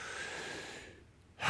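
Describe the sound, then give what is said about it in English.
A crowd draws a long, deep breath together, a broad airy rush that thins and fades to near quiet before a sudden loud breathy surge bursts in at the end. “Take a deep breath real quick, just in case you haven't taken one today.”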